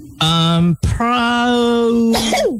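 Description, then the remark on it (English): Two loud sneezes in quick succession, each a drawn-out voiced wind-up breaking into a sharp, noisy burst, the second trailing off with a falling vocal tone. “Bless you. Bless you.”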